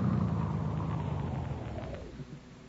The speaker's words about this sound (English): Hey, look, here comes a car now.